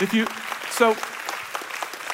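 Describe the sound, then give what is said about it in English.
A church audience claps during a sermon in a steady, scattered patter for about two seconds, with a couple of raised voices calling out over the applause near the start. “If you want to clap, clap it in.”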